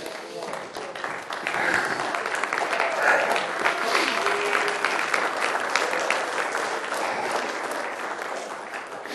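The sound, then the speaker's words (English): A church audience claps steadily together, a dense, continuous wash of hands that swells after the first second and holds at an even level, with faint voices mixed in beneath. “It's kind of hard to clap them stubs, ain't it?”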